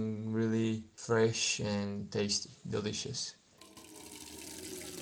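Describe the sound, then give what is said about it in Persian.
A person talks for a few seconds, then a tap runs steadily, filling a watering can with a hissing, splashing rush of water, to water potted flowers, basil and mint. “آب پاشو پر میکنم.”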